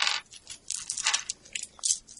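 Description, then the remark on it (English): Dice clatter and tumble across a hard tabletop in several quick bursts of bright rattling as players make awareness rolls in a game, fairly quiet, with short pauses between the rolls and no voices. “Yes, you can all make awareness rolls, please.”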